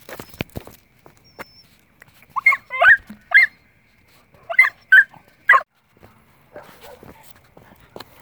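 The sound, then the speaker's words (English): A dog that has seen another dog lets out two quick clusters of high, whining barks mixed with whimpers after a few sharp clicks, then quiet shuffling. “Sorry, my dog saw another dog and it was just extra bad. They freaked out, of course, like they do, which is fine.”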